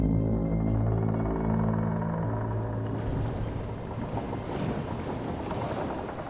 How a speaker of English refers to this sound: So as Steelbeard is preparing to dive, as you can hear the wood creak and water begin to rush into the hole below you,